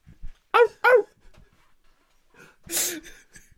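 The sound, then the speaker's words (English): A dog gives two quick, high yipping barks, then after a short pause lets out one louder, rougher bark. No one speaks. “Can I pet that dog?”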